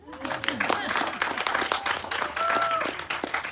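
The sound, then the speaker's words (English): A crowd of people at an event claps steadily and fairly loudly for a few seconds to acknowledge the Rotary family present, with scattered voices and cheers mixed in among the dense patter of hands. “Why not clapping?”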